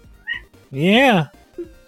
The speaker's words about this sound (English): You decided to show up just when I'm gonna record. Oh, no problems. Cat.